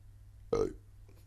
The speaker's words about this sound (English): God, let's not be one of those podcasts. I hate it when I hear too much bodily, like, belching. I'm trying not to.